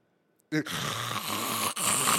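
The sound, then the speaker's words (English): A voice imitates the loud snoring of a man who fell asleep: after a short silence, a harsh, rattling snore erupts and drags on for nearly two seconds, with one brief catch before resuming. “This fool is fucking snoring, okay?”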